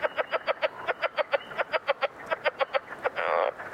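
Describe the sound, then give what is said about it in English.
A southern leopard frog calls in a rapid series of clucking, chuckling pulses, steady, ending in a brief grating rattle, with no voices present. “Southern leopard frogs would be next in line.”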